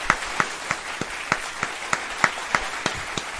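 Audience applause: a steady wash of many hands clapping, with sharper claps landing in an even, rhythmic beat about three times a second, moderately loud and with no talking.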